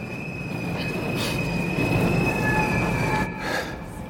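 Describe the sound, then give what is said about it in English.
A subway train at a Brooklyn subway station in New York City rumbles loudly and steadily, its wheels letting out a sustained high-pitched metallic squeal over the heavy rolling noise, with brief hissing bursts partway through. “Orpheus, NYC, meets me at a Brooklyn subway station.”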